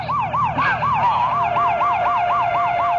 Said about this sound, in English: Hey, hit the lights and the siren.